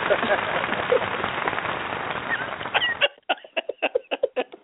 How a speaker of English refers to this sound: Wow, that sounds like the 60s applause, man. we have to update that. Yeah, but love American style applause, you know what I'm saying? That's good.